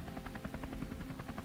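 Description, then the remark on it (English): A helicopter flies past a building on a dark, rainy night, its rotor chopping in a fast, steady thumping rhythm over a low engine rumble, fairly constant in loudness, with no voices. “I look out the window and see a helicopter fly by.”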